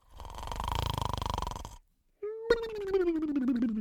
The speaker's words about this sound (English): It was a bright, sunny morning, and Parker was still asleep, snoring softly in his bed.